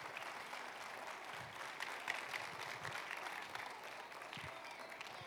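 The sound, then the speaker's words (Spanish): An audience applauds steadily for the mothers and grandmothers coming up front this morning, a dense, continuous patter of many hands clapping at an even level for several seconds, with no one speaking over it. “Vamos a darle un aplauso a todas las madres, abuelas que están pasando en esta mañana.”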